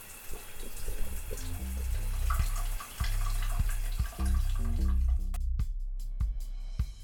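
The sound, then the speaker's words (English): Water pours steadily and gurgles down a drain, with deep, bubbling glugs throughout and a few brighter splashes and drips near the end. No one speaks. “So this can be anything from what you flush down the toilet to what goes down the drain of your shower and all of the interesting things that come with that.”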